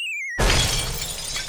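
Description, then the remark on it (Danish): A short falling whistle-like tone gives way to a loud crash of a ceramic cup landing and shattering into 17 pieces, its bright scattering fragments ringing out and fading over about a second. “Så, men koppen landede lige foran ham og knuste i 17 keramiske stykker.”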